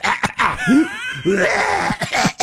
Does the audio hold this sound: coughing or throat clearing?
yes